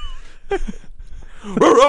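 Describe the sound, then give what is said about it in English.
A person imitates a dog barking: a brief yip early on, then a louder, strained bark-like growl toward the end, fairly loud. “I was like, he's like a bulldog. If he barks at me, I'm gonna get scared.”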